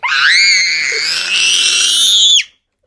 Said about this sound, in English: My brother is crazy. He's the one who's screaming.